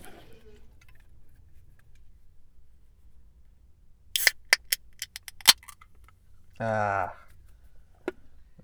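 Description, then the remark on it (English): After a quiet stretch comes a brief burst of fizzy hiss, then a run of sharp clicks and snaps as a bottle of non-alkalized carbonated water is opened in a car. A short voiced sound follows, then one more click. “Excuse me while I just get my drink. 1 second. My non-alkalized carbonated water, right?”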